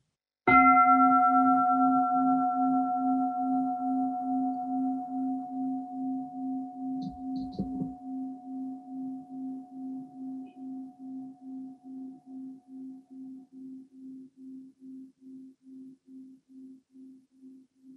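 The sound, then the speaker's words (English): A meditation bell is struck once and left to ring, its low tone pulsing with a slow wavering shimmer while the brighter overtones fade away first. The hum lingers on, gradually softening. “It's going to ring a bell once to kind of help you let go of all those words.”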